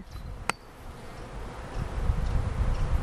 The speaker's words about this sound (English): Do you reckon you can pick up that bee sound? Yes. Oh, it's really buzzing, isn't it? Hang on, let me just point it over there.